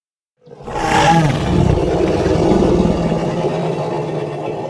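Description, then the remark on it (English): A deep, growling roar of the Bungabo, a ferocious creature in a swamp, bursts in after a brief silence and holds loud and rumbling for several seconds, with rough low-pitched vibration and a gritty, snarling texture throughout. “My bones rattled from the creature's roar.”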